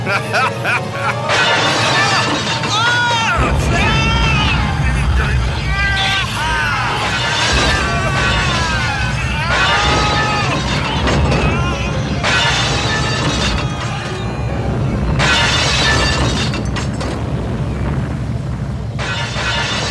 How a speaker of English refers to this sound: they decided, we're going to break one ceramic plate, and we're just going to loop it